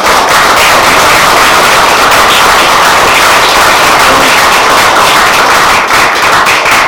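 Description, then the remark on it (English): A steady round of applause from a crowd: dense, crackling hand claps that hold loud and even for about seven seconds, with no talking over them. “So I'd like you know, a vote of thanks and a round of applause for that.”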